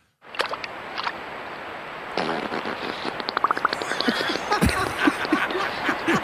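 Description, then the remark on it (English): A beaver fart half in water: a long, wet, bubbling sputter of rapid crackly pops over a steady hiss, growing busier and louder partway through before trailing off. “So if anybody's interested in what a beaver fart sounds like.”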